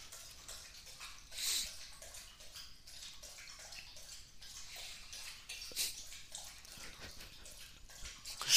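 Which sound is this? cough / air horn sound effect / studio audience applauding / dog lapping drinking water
dog lapping drinking water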